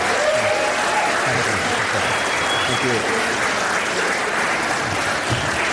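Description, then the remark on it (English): Sustained audience applause, a round of applause for Constantine Kissin: a dense wash of many hands clapping at steady loudness for several seconds, with a few faint voices and whistle-like tones mixed into the crowd noise. “And one more time, a round of applause for Constantine Kissin.”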